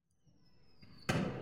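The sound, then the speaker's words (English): A firework shot from a cracked-open studio window, pointed up to the sky, goes off: a thin, high whistle holds steady for about a second, then a sharp, loud burst of crackling noise breaks out and keeps sputtering. No one speaks. “We are shooting fireworks from our studio.”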